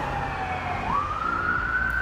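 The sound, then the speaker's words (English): An ambulance siren wails as an ambulance comes down, its pitch sweeping steadily upward over a low traffic rumble. It is fairly loud, with no one talking. “We got ambulance coming down.”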